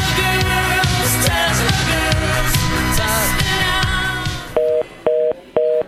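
Busy music fades out and gives way to three evenly spaced telephone tones, each a short, steady two-pitch beep with brief gaps between, clear and fairly loud.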